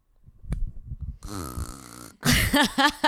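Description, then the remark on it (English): A person makes a loud, rasping snore-like noise with their voice, a low rattling drone lasting about a second, followed by a burst of harsher guttural vocal sounds. “That wasn't a pig noise. That was a snoring noise, by the way.”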